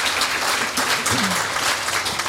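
An evening audience, the event's biggest crowd yet, applauds itself steadily, a dense wash of overlapping hand claps that stays loud and even throughout, with a few faint voices mixed into the clapping.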